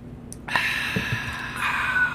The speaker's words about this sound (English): A little beer sip there. That was forced silence.